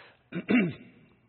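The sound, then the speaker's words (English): A person clears their throat in two quick, rough bursts, the second one longer with a low, voiced rasp, then quiet follows. “I say that as I'm clearing my throat.”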